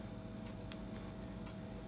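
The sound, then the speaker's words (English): Soft, steady ticking of a Tony's Pizza clock at a desk, a few evenly spaced light clicks against a low background hum, with no one speaking. “All his 8-tracks and his Tony's Pizza clock.”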